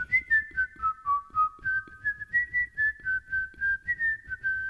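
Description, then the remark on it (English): Someone whistles a song for listeners to guess, the pure tone gliding between notes in short phrases with a steady rhythm, alone with no talking over it. “It's time for Guess That Song, Whistling Edition. I'll whistle a song”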